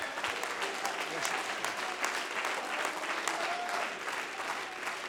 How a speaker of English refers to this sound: Lift your hands and bless his name right now. Clap your hands one more time quickly.